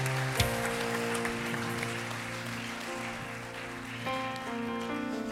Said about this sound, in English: Come on, let's just give him one more hand clap of praise this morning. Yes, thank y'all so much, team.